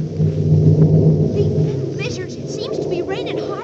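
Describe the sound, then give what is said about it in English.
A deep, continuous rumble of thunder rolls on steadily, loud and low, during pouring rain on a dark night over fields around Simmons Corners, with faint higher chirping sounds flickering over it toward the end. “It's still pouring rain, and the night's mighty dark. Just listen to that thunder.”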